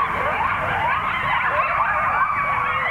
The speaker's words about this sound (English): This pack of hungry coyotes was on the prowl after sundown.